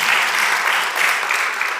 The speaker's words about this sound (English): Yeah, God is good. You can applaud that because it sure wasn't me.